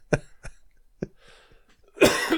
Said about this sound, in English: I'm just going to have a cough for a moment. Okay, go for it. Hold on.